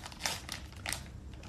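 Crinkling of a chip bag, a few bright crackly bursts of plastic rustle over a low background hum, moderately quiet, with no voices.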